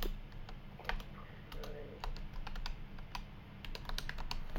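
Rapid, irregular clicks of typing on a computer keyboard, fairly steady over a low hum, with no talking.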